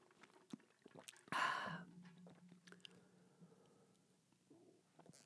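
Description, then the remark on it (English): Someone takes a sip of water: a brief loud slurp, then soft swallowing and small wet mouth clicks, with no one talking. “And with that, let me have a sip of H2O.”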